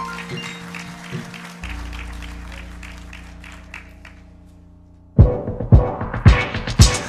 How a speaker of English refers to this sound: Come on, let's give the Lord one more hand clap of praise as they come.